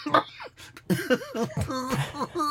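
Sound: coughing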